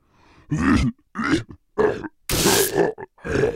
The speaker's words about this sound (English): What's that red thing you just coughed up into your Wadlow's kerchief? A little more tonsil than normal.